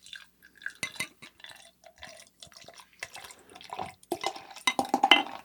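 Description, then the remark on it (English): Beer is poured into a glass, with wet glugging, splashing and a few light clinks of glass, building into a busier fizzing gurgle toward the end. “Oh, get this nice sweet pour.”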